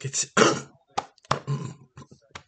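A fit of harsh, raspy coughing from a person while recording: a couple of strong bursts at the start, followed by several shorter, weaker coughs spaced irregularly, with no speech.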